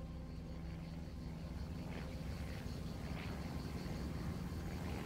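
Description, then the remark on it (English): A steady, low aircraft engine drone hums continuously, a dense rumbling tone with no voices, holding at a fairly even level throughout. “But the drone of the aircraft just gets fainter and fainter.”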